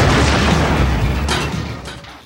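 A loud, booming explosion sound effect in a movie trailer cuts off the line "I'm gonna kick your...", hitting at once and rumbling on with a heavy low-end roar, punctuated by a couple of sharper secondary bursts before slowly fading.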